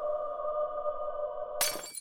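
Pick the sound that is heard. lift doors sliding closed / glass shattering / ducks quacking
glass shattering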